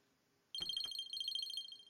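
A telephone rings with a high, warbling electronic tone of rapid pulses. It starts abruptly after a brief quiet moment, with a couple of low clunks at the onset, and no one speaks.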